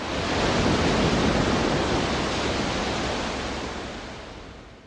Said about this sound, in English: One critic wrote, "Waves come splashing out of the speakers."